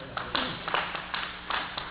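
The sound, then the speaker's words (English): An audience at a church service claps in a loose, steady rhythm, bursts of hands landing roughly every few tenths of a second at moderate volume, with a faint murmur of voices underneath. “I didn't say that to be clapped for.”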